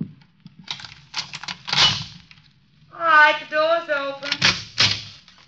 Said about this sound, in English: All right, the door's open. All right, now shut it and come on in.